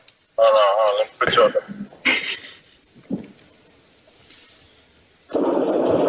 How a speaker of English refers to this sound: have the guts to pick up the phone